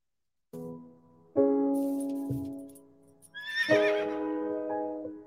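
A horse neighs loudly: a couple of low harmonic calls, then a high, quavering whinny that trembles and fades over a sustained lower tone. No one speaks.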